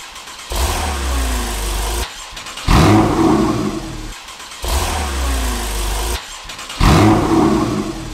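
A car engine starts up four times in quick succession, comparing the stock exhaust with an aftermarket Soul Performance exhaust with its valve closed, alternating between a deep, steadier rumble and a louder, raspier roar, with no talking.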